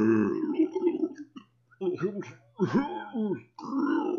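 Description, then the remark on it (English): A voice imitates wet gurgling and drawn-out groaning moans, like sorrowful moans mixed with gasping for air and squelching noises, in several rough, throaty bursts with short pauses between, low and strained with bubbly, burp-like textures, fairly loud and alone. “Proceeding down the sloped tunnel, that gurgling and groaning just starts to fill the air.”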